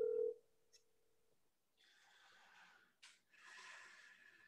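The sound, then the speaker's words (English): A brief electronic ringback tone of an outgoing phone call sounds at the start, then fades out, followed by quiet, breathy huffing. “Pick up the fucking phone”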